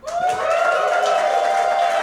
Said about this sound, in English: Round of applause.